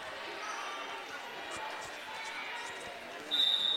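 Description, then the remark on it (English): A volleyball gets slapped by hand a couple of times before a serve, short sharp smacks over the steady murmur of a crowded gym, and a bright whistle sounds near the end; a volleyball match between Adams Central and Minden. “Slaps it a couple of times, waits for the defense to get set.”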